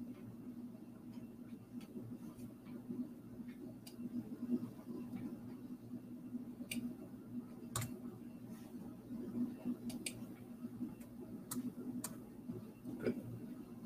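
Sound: computer mouse clicking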